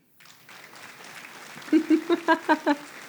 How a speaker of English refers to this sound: Yes. Yes. You needed some applause for that one. Thank you.